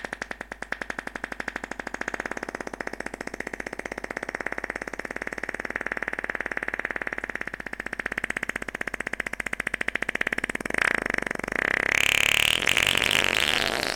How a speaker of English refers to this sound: That's so awkward when you're at a bank of urinals in a public restroom and everyone's pissing, minding their own business, and then you just hear this fart.